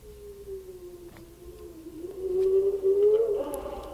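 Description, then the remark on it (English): A pet wolf named Fido howls in one long, drawn-out note that holds steady, then swells louder and bends upward near the end, with no talking. “Don't be scared, that is just my pet. He is a wolf.”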